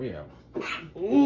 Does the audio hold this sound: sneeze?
yes